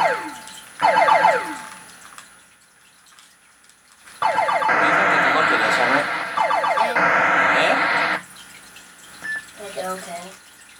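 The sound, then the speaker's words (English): Explosions in a space shooter video game with lasers and a mothership: falling electronic chirps give way to a long, loud, crackling burst of noise lasting several seconds, followed by a few fainter bleeps and rattles. “The explosions are satisfying.”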